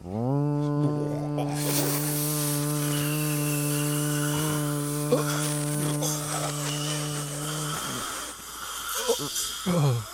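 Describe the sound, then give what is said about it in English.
A vacuum cleaner runs with a loud, steady buzzing drone and airy hiss for about eight seconds, then the motor stops, leaving scattered rustling and faint voices. “I'll just put my mouth on this vacuum.”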